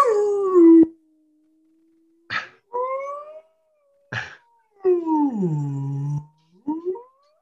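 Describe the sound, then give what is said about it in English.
A person imitates a whale call with a series of loud, drawn-out moans that swoop and slide downward, broken up by short breathy bursts, with no ordinary speech. “Whale walks into a bar. Okay. Asks the bartender for a drink.”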